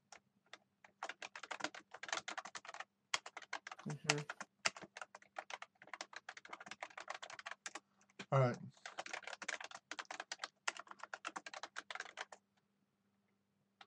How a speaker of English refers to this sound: Okay, I'm going to type in.